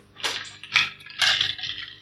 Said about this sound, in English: So 1 second as I take a sip of my nootropic.